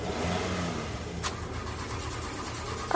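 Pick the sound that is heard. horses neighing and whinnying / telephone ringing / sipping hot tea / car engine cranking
car engine cranking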